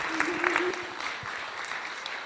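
A steady round of applause from a group, with dense clapping sustained throughout and a brief tonal whistle-like sound early on.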